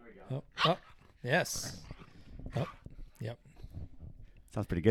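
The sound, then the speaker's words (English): A puppy named Perth, a few weeks old, whines and gives a few short barks in the background while running amok with a pit bull named Stella, as people talk casually, the animal sounds intermittent and partly buried under the voices. “whining and barking”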